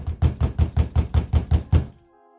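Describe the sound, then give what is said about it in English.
Loud, insistent knocking on the door of a house on Flower Street on Saturday, July 8, 1922, about nine heavy thuds in a fast, even rhythm, then an abrupt stop with a faint ringing tail. No voices. “She flinched when she heard the loud knocking.”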